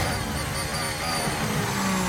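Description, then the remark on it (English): A racing car engine roars steadily at high revs, a dense, buzzing drone with a brief rise in pitch near the end, loud and continuous throughout with no voices. “keep the revs up.”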